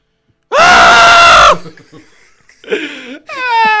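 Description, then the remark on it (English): A harsh, heavy-metal-style scream blasts into a microphone for about a second, followed by a brief lull and then two shorter, strained screams. “We'll go heavy metal. We'll just start screaming into the mic.”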